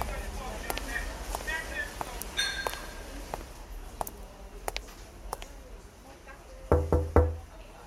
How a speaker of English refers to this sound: I knocked on the door and the door glided open.